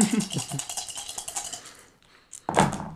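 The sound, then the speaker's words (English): A D4 die clatters across a hard tabletop in a quick burst of rapid clicks that slow and fade over a couple of seconds, followed by a brief pause before someone starts speaking. “Okay, then I'll roll a D4 for the specialty I don't have.”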